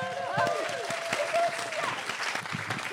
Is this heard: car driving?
no